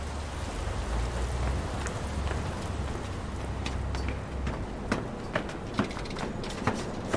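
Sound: rain falling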